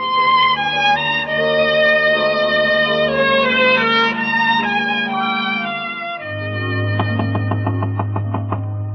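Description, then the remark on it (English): Sustained orchestral music plays, then fades to a low hum as a quick series of about eight evenly spaced, distinct knocks sounds on a wooden door at a ranch. “Why are you knocking at the door?”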